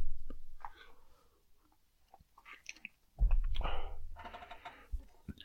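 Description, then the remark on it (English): Someone sips hot ginger tea: soft mouth clicks and small swallows, then a louder, breathy slurp lasting about a second, followed by a few more wet clicks. No one speaks. “I'm not pausing like that. I'm just taking a sip of my ginger tea.”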